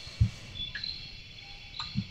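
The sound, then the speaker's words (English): A brown wood owl gives two short, deep hoots about two seconds apart, set against a steady buzz of night insects and a few faint chirps. “Now here's a brown wood owl. Just goes hoot.”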